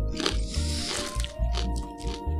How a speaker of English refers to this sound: I'm sure there's some people that will just turn off your podcast because we're chewing in their ears now.